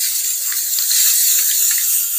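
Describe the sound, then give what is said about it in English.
A steady, continuous hiss from an aerosol spray can, bright and airy, holding at an even loudness for about two seconds with no voices present. “You realize something is not glued because the wind from the spray can.”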